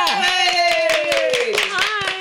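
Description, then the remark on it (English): Brisk, steady hand clapping, a quick run of sharp claps lasting a couple of seconds, with a sustained, slowly falling vocal tone running underneath. “I clapped myself.”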